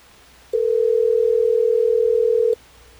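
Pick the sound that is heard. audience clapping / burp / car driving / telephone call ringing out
telephone call ringing out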